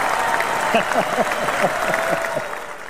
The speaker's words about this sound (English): That's the Karate Kid round of applause. Go ahead.